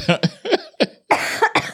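A harsh coughing fit: around six rapid coughs in quick succession, with a longer raspy cough near the end and no talking.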